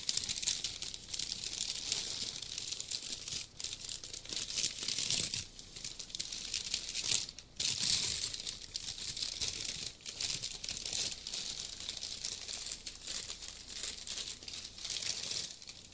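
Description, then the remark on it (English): Continuous crinkling and rustling of plastic packaging being unwrapped from a package holding a Rooster Teeth "Team Coffee" coffee mug, a dense, bright crackle that stays steady with brief pauses and occasional sharper tearing bursts. No one speaks. “Something very fragile if they wrap it up like this.”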